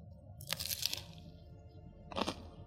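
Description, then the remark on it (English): Two crisp, crackly crunches of biting into a BLT sandwich, the first longer and the second shorter a moment later, with no talking. “Ooh, good crunch”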